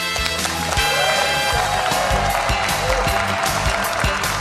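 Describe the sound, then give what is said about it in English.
A live audience at the 41st annual Spring Atlanta Home Show at the Cobb Galleria claps steadily throughout on cue for a live radio broadcast, a dense, bright wash of hand claps with a rhythmic pulse, mixed over a sustained musical backing. “We got them to clap when we say, here's Walter.”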